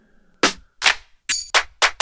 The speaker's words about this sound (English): I like this clap right here, but I'm gonna turn the high end down so it's more muffled out a little bit.